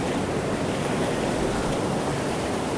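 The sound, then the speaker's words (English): A steady wash of ocean water churns and hisses continuously around rocks, with broad noisy surf filling the whole stretch and a faint rumble of wind underneath, no voices present; recorded while standing in the ocean among the rocks. “So now I'm in the middle of some rocks. I'm actually in the ocean.”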